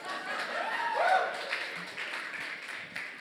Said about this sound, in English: Two people clap. That's great.